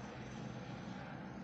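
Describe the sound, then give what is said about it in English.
A helicopter passes overhead, its engine a steady, continuous droning rumble that stays fairly quiet throughout, with no voices over it. “Did y'all just hear that helicopter?”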